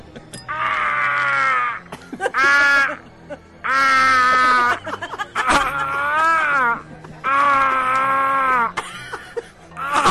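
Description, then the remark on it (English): A person acts out a dying scream: a run of loud, drawn-out wails and groaning cries, about five long bursts with wavering, bending pitch and short gasps between, no words. “give me a convincing final death word and scream.”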